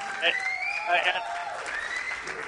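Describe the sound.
A burst of applause from a co-driver and his crew, mixed with cheering and whooping voices, fairly steady and moderately loud throughout, with a few louder swells of shouting.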